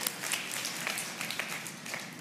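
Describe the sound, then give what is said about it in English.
An audience breaks into steady applause, many hands clapping together in a dense, sustained wash of sound at moderate volume, with no voices heard. “Can you give me a round of applause?”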